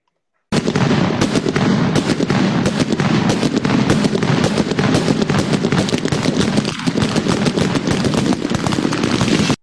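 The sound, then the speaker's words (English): Rapid, continuous crackling bangs, like fireworks or gunfire going off, fill the whole stretch in a loud, dense barrage of sharp pops with no pauses and no voices. “Yeah, I hope it's not gunshots at my book. I hope it's fireworks.”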